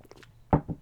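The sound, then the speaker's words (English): A person drinking water: after a soft, quiet start come two muffled, low gulping swallows in quick succession, the first louder than the second, with no talking. “You can listen to me drink water.”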